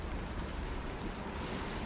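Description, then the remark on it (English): Steady, hissing storm rain pours without letup, a dense, even wash of noise with no distinct drops or breaks standing out, and no voices present. “The, stable door just flapping in the storm.”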